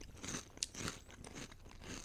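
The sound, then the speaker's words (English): Crunching of kettle-cooked salt and vinegar chips made with sea salt: a run of crisp, crackly bites and chews with one sharp snap partway through, steady and fairly loud with no talking. “This is the perfect amount of vinegar on a salt and vinegar.”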